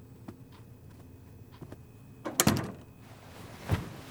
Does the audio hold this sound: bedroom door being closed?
yes